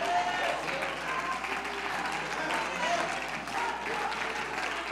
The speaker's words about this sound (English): Come on, clap your hands if he's delivered you.